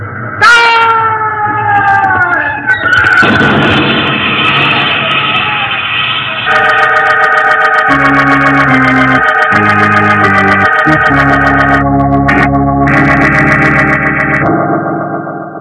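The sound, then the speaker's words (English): A train passes by in London, its horn blaring in long, loud, sustained chords over a rumbling roar, with a brief shrill, sliding screech at the start, as a police constable is pushed in front of it. “The poor constable was pushed before the passing train, and his body was crushed.”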